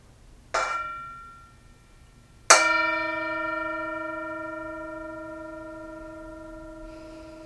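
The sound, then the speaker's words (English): A Tibetan singing bowl, used as a bell of mindfulness, is struck twice, a softer tap and then a stronger strike about two seconds later, its clear, shimmering tone ringing on and slowly fading with no voices. “As always, we have the bell of mindfulness, the singing bowl from Tibet, and we invite you to enjoy the sound of the bell.”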